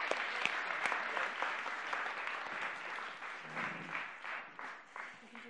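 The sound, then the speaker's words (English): Sustained audience applause, a dense wash of many hands clapping at a steady, fairly loud level for several seconds, with a few sharper individual claps standing out and faint murmurs underneath. “Right, round of applause for these two then.”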